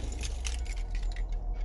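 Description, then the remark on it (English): Keys jangle as they are handed over, in a quick, scattered series of bright metallic clinks lasting under two seconds over a low background hum with no talking. “Here's the keys.”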